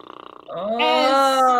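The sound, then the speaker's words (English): A voice imitates a fart: a buzzy, sputtering start breaks into a loud, sustained, pitched blat that rises slightly and holds for over a second before cutting off. “You all hear a fart escape the butt.”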